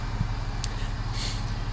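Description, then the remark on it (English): A bus engine idles, a steady low droning rumble that holds constant throughout, with a brief faint hiss partway through and no one talking. “The bus has been here for a while.”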